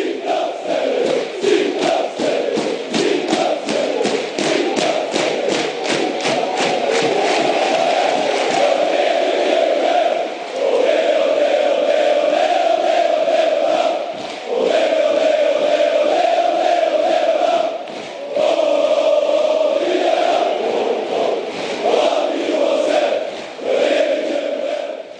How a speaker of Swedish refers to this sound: Alla sjunger. Ja. Alla sjunger. Alla ställer sig upp. Det är inte bara klacken som är Hägersten Hot Heaven, utan alla på läktarna gungar igång.